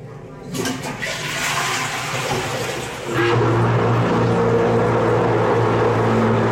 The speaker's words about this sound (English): and the reason why I'm taking a voice note in the washroom is because this is the furthest underground toilet in the world, and the noise it makes when you flush the toilet is quite something.